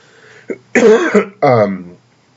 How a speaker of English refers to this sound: I apologize for the coughing, guys. I think it's all the talking. I honestly have not coughed in days. I think the talking is making my voice dry.